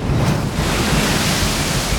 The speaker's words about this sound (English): Another splash of water curled up from the sea, splattering Amanohoki's sandals